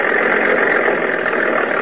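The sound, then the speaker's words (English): A tractor engine, called an agricultural hot rod, runs steadily while being used to dig up a front yard to plant grass seed, a loud, continuous rumbling drone that holds the same pitch and level throughout, with no voices over it. “What do you think you're doing on that agricultural hot rod?”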